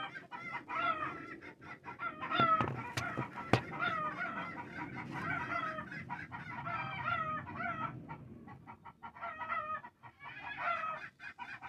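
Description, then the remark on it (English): A flock of chickens clucks and squawks excitedly and nonstop, their overlapping calls fairly loud, with a few sharp knocks partway through. “Might be a drone or something making my chickens all go nuts.”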